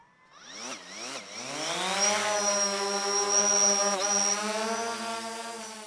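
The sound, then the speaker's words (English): A Phantom 4 quadcopter drone's motors whir to life, their buzzing whine sweeping up in pitch over the first two seconds before settling into a loud, steady hum as it lifts off, launched about 300 feet into the air to photograph a forest after a wildfire. “Okay, so powering on the drone.”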